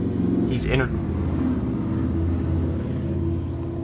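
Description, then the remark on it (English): A motorcycle engine rumbles loudly outside, a steady low drone with a quick revving whine near the start, while muffled talk carries on beneath it. “I'm not trying to do a podcast here, motorcycle.”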